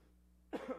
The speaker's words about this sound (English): excuse me, I still have a little bit of a cough.